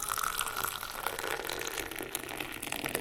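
A steady trickle of tea pours continuously into cups for a few seconds, a bright splashing with a faint ringing tone, with no voices; the tea is Tregothnan's strong English breakfast, blended with tea leaves from India.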